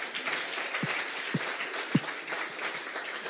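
An audience applauds steadily, a dense wash of many hands clapping, with a few sharper, heavier claps standing out now and then.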